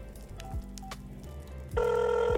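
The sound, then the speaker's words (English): A telephone rings with an electronic tone as someone places a call: a couple of short faint beeps, then a louder sustained ring lasting under a second over a low background hum. “I think I should call Ren right now.”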